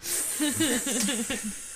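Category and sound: machine, fog machine hissing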